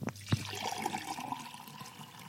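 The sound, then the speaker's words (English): Water at about 56 degrees centigrade pours steadily from a pot into two identical glasses with a rising, filling tone, starting with a couple of sharp clinks, then a continuous splashing stream. “I've got a pot of water here, and I've got a thermometer, and at the moment it's sitting at about 56 degrees centigrade, and I have two identical glasses, and I'm going to fill each one of them with the same amount of water.”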